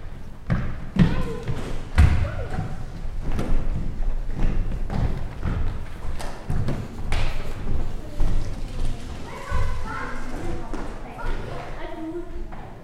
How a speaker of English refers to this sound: Well, sounds like the kids are done. Okay. We'll allow the kids to come in and grab your seat.